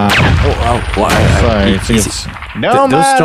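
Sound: gunshots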